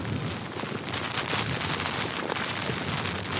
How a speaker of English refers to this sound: Oh, it's suddenly gotten non-clement. Wind and rain.